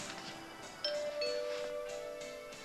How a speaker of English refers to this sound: What was that? The doorbell rang. Why did the doorbell ring? Because someone's at the door.